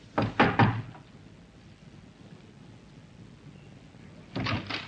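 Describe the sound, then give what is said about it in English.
Three sharp knocks on the door of a small flat in a good residential district, distinct, followed by a quiet pause with faint room tone, then another short burst of knocking near the end. “But instead, he knocked.”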